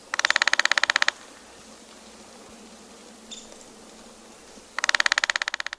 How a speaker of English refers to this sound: With experience, one can identify woodpeckers by their drumming, as other birds can be identified by songs. Here's a downy woodpecker drumming.